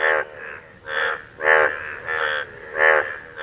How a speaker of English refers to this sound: Oh, it's the American bullfrog. Very close. It's not the American bullfrog. It's the Indus Valley bullfrog. Hoplobactracus tigerinus.